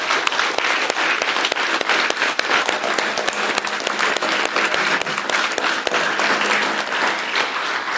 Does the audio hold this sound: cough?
no